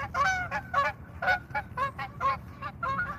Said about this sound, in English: Oh, check these geese. They're going to fly right over us. Oh, no.